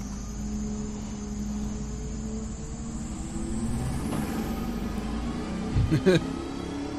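muscle car engine revving

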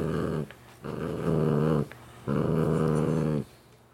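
dog growling

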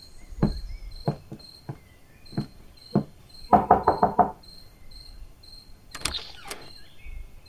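knocking on a door

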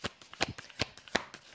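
shuffling tarot cards

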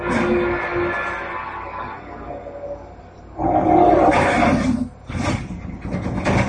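cougar roaring

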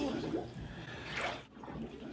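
water poured

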